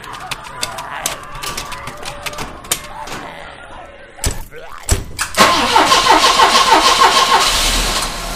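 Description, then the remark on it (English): An ambulance engine cranks and catches after a few scattered clicks and a door-like thud, then settles into a loud, steady, rumbling idle with a rough, hissing texture. “Get in the ambulance.”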